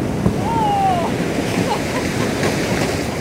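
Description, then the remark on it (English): A research ship grinds through Arctic sea ice while searching for an ice floe thick enough to serve as a base: a steady, loud, rushing roar of churning water and ice, with a brief high squeal early on and scattered scraping and knocking throughout. “That's what it sounded like as our boat plowed through the sea ice as we looked for an ice floe that was thick enough to call home base for an entire year.”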